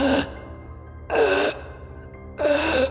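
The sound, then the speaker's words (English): A voice imitates a hollow, breathy gasping sound coming from a ticket booth, three times, each gasp rising and falling with an eerie moan-like quality, separated by short silences, fairly loud. “And as you approach the closest ticket booth, you hear this kind of hollow sort of gasping sound, like a...”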